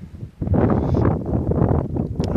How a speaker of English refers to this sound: It's rather windy and cold here at the moment. I believe you got rain down at home. Not here, but as I say, it is windy, so I'm not sticking around long today.